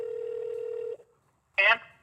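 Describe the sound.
A steady electronic phone ringing tone hums for about a second, cuts off into a short pause, then a brief voice answers on the line.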